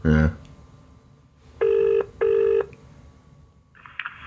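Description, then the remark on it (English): A telephone ringback tone during an outgoing call to the Pepe's head office in Watford gives one clear double ring, two short buzzing pulses close together, heard over a faint line hiss with a brief voice fragment just before. “Listen, this is a bit of an odd call, but I'm just ringing.”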